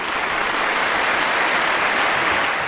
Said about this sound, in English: That deserves another round of applause.